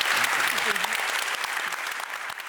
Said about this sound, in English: So with that, I'm going to close the proceedings, and let's have one more round of applause to thank our speakers tonight.